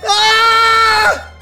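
One loud, high-pitched human scream held steady for about a second, then breaking off with a brief downward slide. No talking, only a faint low hum underneath.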